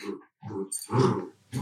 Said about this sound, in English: I can hear the dogs rustling around. They're eager to probably go for a walk on the beach.